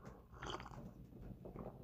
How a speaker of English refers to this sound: And hold on a second, guys. I need a sip of coffee.